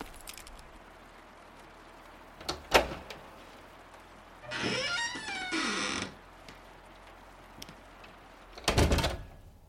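A couple of sharp metallic clicks as a key turns in the lock of a house's front door, then the door swings open with a long, wavering creak, followed by a solid thud as it shuts. No voices.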